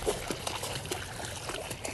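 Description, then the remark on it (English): A dog jumps and splashes about in water during a trail hike, with steady sloshing and dribbling broken by a few sharper splashes, and no talking. “She gets to run outside, then jump in the water.”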